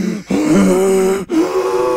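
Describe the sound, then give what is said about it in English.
A voice exaggeratedly imitates a grandmother's heavy panting, with loud, drawn-out voiced breaths broken by two quick pauses, alone with no talking. “Yeah, she was like panting.”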